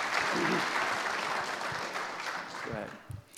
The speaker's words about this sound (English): I think we should give you a round of applause, right? And all of our tech team.